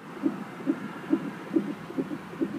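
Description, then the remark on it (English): An unborn baby's heartbeat, heard the night before birth, thumps quickly and steadily, about six muffled whooshing pulses in under three seconds, heard alone over a soft background hum. “I think we both eventually fell asleep, and the cool thing is, we fell asleep to our baby's heart beating.”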